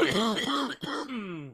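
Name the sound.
coughing and throat clearing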